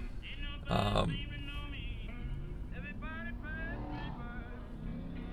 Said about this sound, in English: All these traffic lights have been out. I've been on the road over an hour, not making much progress.